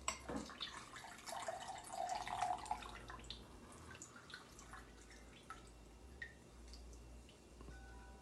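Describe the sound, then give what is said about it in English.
A hand press squeezes fruit, with a burst of wet crushing and spattering for a few seconds, followed by scattered, irregular drips of juice falling, fairly quiet. “Look at how it smashes it.”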